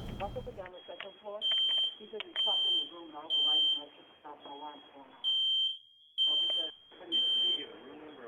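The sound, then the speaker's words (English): A loud, shrill smoke alarm beeps in repeating sets of three long tones, with voices talking continuously underneath the alarm. “It's probably why the alarm's going off.”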